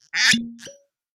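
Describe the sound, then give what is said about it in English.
A pair of sharp cork pops from two bottles opened in unison land close together, almost at once, with a brief hollow ring after each. Both are fairly loud, with no talking. “Oh, we popped our corks in unison.”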